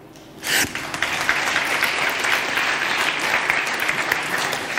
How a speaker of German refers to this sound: Den verhaltenen Applaus bitte ins Protokoll.